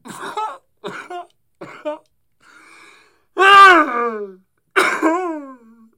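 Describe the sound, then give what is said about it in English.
Three quick, short coughs, then two loud, drawn-out voiced coughs that slide down in pitch like exaggerated groans, with no other sounds; a real cough played up theatrically. “I did actually have to cough there, so that was part of the theatrics and drama with that.”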